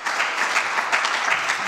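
A crowd claps steadily, a dense, even wash of many hands with no individual claps standing out, sustained at a fairly loud level throughout with no voices.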